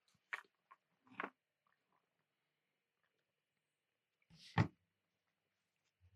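Someone takes a drink of water: a few soft wet mouth clicks, then a louder gulping swallow after a pause, with near silence around them.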